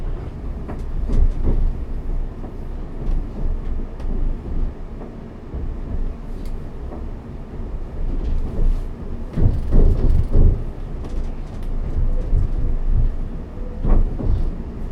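An early evening commuter train on the service to Clacton-on-Sea, calling at Stratford, rumbles along steadily with a deep, continuous low-frequency roar, broken by sharp rattles and clanks from the carriages and occasional louder surges of wheel noise on the rails.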